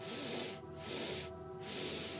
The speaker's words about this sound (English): So as you take a breath in, I want you to breathe in on three. Hold for three, and then breathe out for three. Breathe in for three. Hold for three, and then breathe out for three. Breathing in for three.